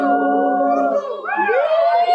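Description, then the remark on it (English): A dog howls loudly and continuously for about two seconds, its long wavering tones sliding up and down with rich harmonics, clear with no other sounds. “Just like that dog.”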